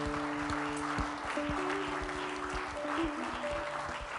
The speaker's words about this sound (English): I want you all to put your hands together and clap for some special friends of ours.